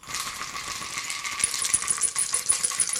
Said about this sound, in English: Just shake that dice.